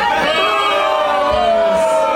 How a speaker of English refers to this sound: Everyone is booing her.